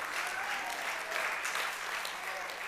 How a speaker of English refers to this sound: I'm glad you're clapping. And I'm glad you've liked that, because now it's about you.